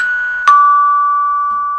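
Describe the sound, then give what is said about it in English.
A two-note doorbell chime rings out, a higher tone followed by a struck lower tone that hangs and slowly fades. No one speaks. “I mean, it's not like demons ring the doorbell.”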